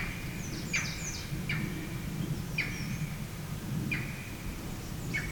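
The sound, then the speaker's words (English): A green heron gives about five sharp, short calls at uneven intervals, moderately faint, over a steady low rumble of outdoor background noise. “This bird call.”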